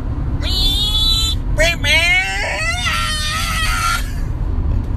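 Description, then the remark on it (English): A voice imitates a race car engine with a strained, high whine that revs upward in several rising sweeps, loud, over a steady low rumble in the background. “I'm a race car.”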